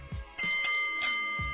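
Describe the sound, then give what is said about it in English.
A doorbell chime rings out clearly, several bright tones struck in quick succession over a sustained ringing hum, with soft low thumps at the start and end. No voices. “Bold enough bell.”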